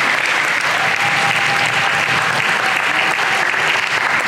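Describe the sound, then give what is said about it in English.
A church audience applauds steadily to thank the musicians who played contemporary praise music that morning, a dense, even wash of many hands clapping that holds loud and unbroken throughout, with no voices standing out above it. “I'm not hearing enough clapping.”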